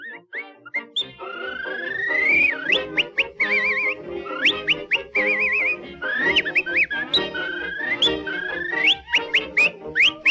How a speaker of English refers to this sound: Now, this little clip with the whistling is a silent filmed insert, filmed a little later.